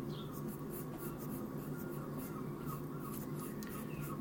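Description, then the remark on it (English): Faint, high bird chirps sound a few times in the background, outdoors, beneath a steady scratchy rustle like a pen on paper and a low, constant hum. “So the birds you hear on the background are trying we're to outside.”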